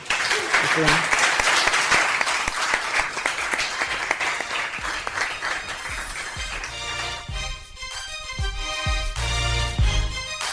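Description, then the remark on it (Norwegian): Dense audience applause fills the first several seconds as a steady, noisy crackle of many hands, then thins and fades under rising music with a beat. “Litt applaus.”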